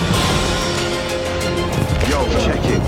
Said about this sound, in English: Lovely fireworks.